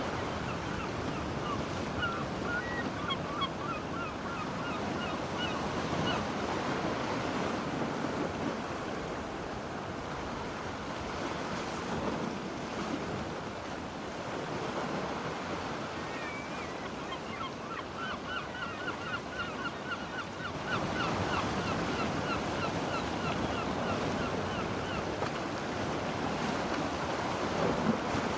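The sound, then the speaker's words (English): Steady roar of ocean surf washing onto a beach, rising and falling continuously for the whole stretch, with faint bird-like calls scattered above it and no voices. “Breathing in, breathing out, watching the waves come in.”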